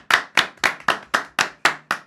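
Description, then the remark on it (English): Eight sharp, crisp claps land in a steady, even rhythm, about four per second, loud and clear with no voices around them. “Clap it up for that.”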